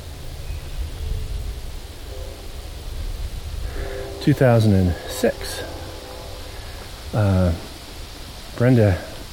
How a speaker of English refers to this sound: Oh, there's a train. I love that sound. I thought I heard it.